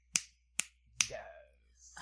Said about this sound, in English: Or as we like to say here at the Shade Parade, that's four snaps in a Z formation.